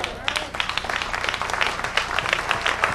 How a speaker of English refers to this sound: I knew the hand claps was going to be like this.